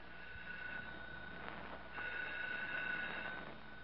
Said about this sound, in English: You come in here right this minute. The phone's ringing. Well, answer it.